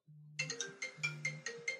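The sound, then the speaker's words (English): A phone ringtone for an incoming call plays, a bright electronic melody of quick repeating notes over a low sustained tone, with no one talking. “is calling me right now. Should I do a little phone call here?”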